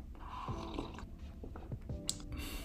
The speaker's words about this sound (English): So I'm gonna take a sip.